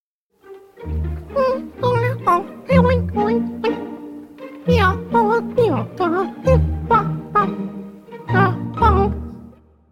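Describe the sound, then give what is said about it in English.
A human voice imitates guinea pig squeaks and chirps as welcome music, in quick rhythmic bursts, fairly loud, running steadily for several seconds with brief pauses between phrases. “can we get some welcome music for our guinea pig experts? Sure can. For our human listeners, this is in guinea pigs, so you might not understand it, okay?”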